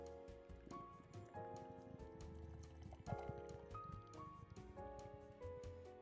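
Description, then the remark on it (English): Beer pours from a can in a humid room in a steady, gurgling splash with small crackling bubbles, over faint background music, with no talking. “Let me see if I could pick up the pour here.”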